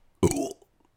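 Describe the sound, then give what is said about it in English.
A single short, loud burp with a brief voiced rumble lasting under half a second, followed by quiet. “Also, I burped.”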